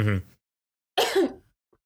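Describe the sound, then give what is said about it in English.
A short voiced grunt followed, after a brief pause, by a rough, raspy throat clearing, fairly loud, then silence. “It makes fun of me that my coughing sounds fake, but I'm just trying to clear my throat without sounding like a smoker.”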